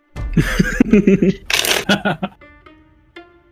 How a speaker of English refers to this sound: The man shuffles his deck.